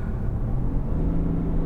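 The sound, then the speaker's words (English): A steady, low engine rumble from a half-ton pickup truck being driven, droning continuously and fairly loud as if heard from inside the cab, with no voices. “It's a half ton, but it's a big truck.”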